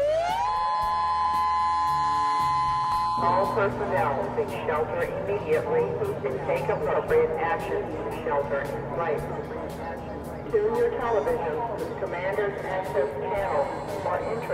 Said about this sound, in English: In some parts of the state, emergency sirens were wailing. Listen.